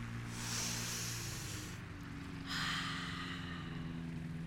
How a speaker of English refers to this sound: I'll just cool my head and do some deep breathing.